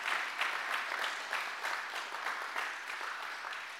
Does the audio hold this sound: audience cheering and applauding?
yes